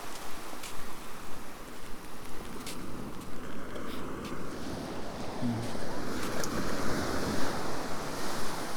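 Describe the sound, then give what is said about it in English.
Steady roar of surf washing onto Pendarrow Beach as rain begins, with wind buffeting across the scene and a few sharp crackles. The waves swell and ease continuously without any clear pause. “Crossed over onto Pendarrow Beach.”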